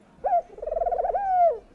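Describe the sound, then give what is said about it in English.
A single soft mourning dove coo, clear: a rising opening note, a brief fluttering warble, then a long smooth mournful tone that slowly falls away. “Finally, she saw a nice-looking mourning dove sitting in a sycamore tree.”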